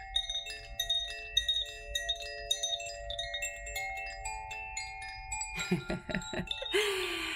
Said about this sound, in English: I feel called to share my Koshi Chimes ritual with you because today's a really special day.